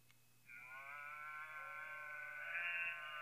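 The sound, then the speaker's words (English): A novelty holiday shirt with a moving cow plays a single drawn-out electronic cow moo that holds for nearly three seconds, fairly loud, over a faint low hum. Nobody speaks. “Shirt moves. Oh, it moves? Wow. It moves. Oh, okay. It's a cow.”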